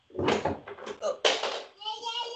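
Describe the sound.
A little boy bangs on a door in a few heavy, uneven thumps, followed by a short high-pitched child's voice calling out.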